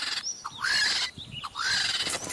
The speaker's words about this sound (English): Is that sounds like a bird? Is that a monkey? That's a... That is a kookaburra. I'd know that sound anywhere.